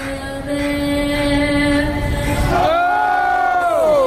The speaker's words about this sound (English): We yell, "Oh!" during the national anthem, as is the wont of us O's fans.